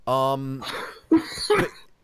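A sneeze: a brief voiced, tonal build-up followed by a few sharp, breathy bursts, fairly loud and heard on its own without talking.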